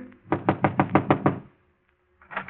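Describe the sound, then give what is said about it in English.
Seven quick, evenly spaced, firm knocks on a wooden door marked manager in the crowded Tripoli Cafe, followed by a brief silence and then a few more raps starting. “He hesitates a moment, glances at the two men beside him, and knocks.”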